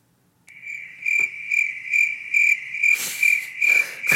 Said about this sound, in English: Crickets.